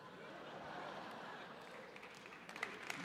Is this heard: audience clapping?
yes